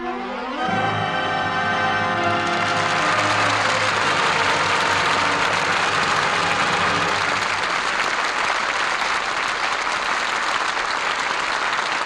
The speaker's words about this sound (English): Curtain falls on All My Sons, and that applause is our thanks to a stellar cast for their really fine performances. Burt Lancaster, Edward Arnold, Scott Brady, and Ann Pierce.